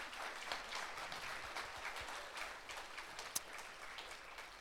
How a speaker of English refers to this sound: Oh, come on, round of applause, please.